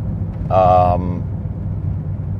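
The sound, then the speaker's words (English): Steady low engine rumble from a vehicle on the move as it is driven around semi-trucks and customers being loaded at a loading dock at 7:45 a.m., continuous throughout, with a brief high, tonal, voice-like sound rising above it for about half a second near the start. “You gotta bear with me as I navigate my way around these semi-trucks and customers that are getting loaded.”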